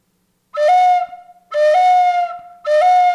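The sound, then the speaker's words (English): An instrument played without reverb imitates a bird call: three loud, reedy whistling phrases, each stepping up slightly in pitch and then holding, repeated with short pauses between them and no talking. “Like the bird thing here. I'll do it without the reverb.”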